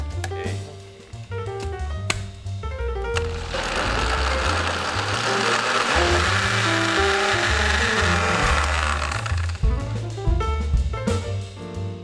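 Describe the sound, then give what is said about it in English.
A blender whirs loudly and steadily for several seconds as it blends avocados and milk for ice cream, its rough motor roar rising over upbeat background music, then cuts off as the music carries on alone. “When it's ready, we set it aside to cool, and then we toss the avocados and milk in the blender.”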